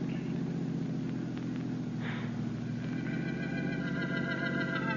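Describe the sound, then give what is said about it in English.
A steady, low engine drone rumbles continuously as a car drives along, approaching an airport, with a faint higher whine rising in the last couple of seconds and no voices. “Slow down, Gabbo. We're coming to the airport.”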